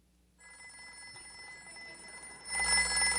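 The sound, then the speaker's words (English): An old-fashioned rotary telephone bell rings steadily with a bright metallic jangle, continuous rather than in short bursts, growing louder toward the end. No voices are heard. “A rotary phone? A rotary phone?”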